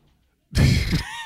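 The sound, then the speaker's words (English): After a moment of quiet, a door suddenly bumps open with a loud thud as a boy walks into the room, followed by a short rattling, creaking rush of sound that gradually fades. “my son is trying to walk into the room”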